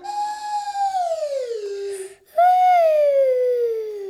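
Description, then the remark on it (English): In a slide-singing game, a voice copies a slide whistle with two long, smooth downward glides, the second starting after a brief gap, each sliding from a bright mid pitch to a lower tone, steady and fairly loud. “I'm gonna play a slidey sound on my slide whistle, and then you make that same slidey sound with your slidey voice.”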